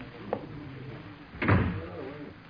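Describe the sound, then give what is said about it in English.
A door is pushed shut: a light click, then a second later a heavier, muffled thud. No one speaks. “Close the door, Crow.”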